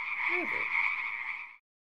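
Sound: frog croaking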